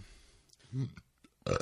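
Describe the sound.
A short, low, guttural burp rumbles up near the middle, followed a moment later by a louder burst of voice close to the microphone.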